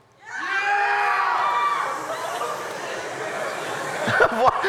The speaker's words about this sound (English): Why are we booing that?